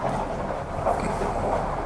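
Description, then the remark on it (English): A steady, heavy rolling rumble of a car moving through an alley, with a constant low drone and a faint rattling texture that holds even throughout, no voices. “As a car rolls through the alley on his way to pay his bills.”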